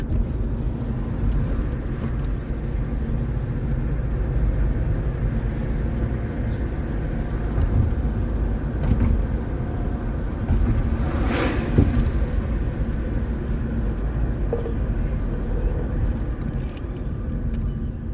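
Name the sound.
car driving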